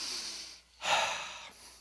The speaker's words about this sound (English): Breathe.